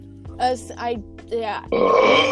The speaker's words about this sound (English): That's a weak burp, bro. I know. Weak burp. It was a weak burp.